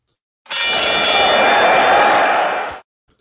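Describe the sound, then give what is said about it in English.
A loud, bright metallic bell rings for just over two seconds, its clanging tones sustained and shimmering before stopping abruptly. No one speaks. “I'd like to start every show by ringing the bell.”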